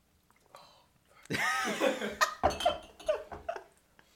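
A burst of gagging and retching starts abruptly after someone tastes a batch that tastes of pickles, followed by a string of harsh, loud coughs and choking sputters that trail off over a few seconds, with someone laughing alongside.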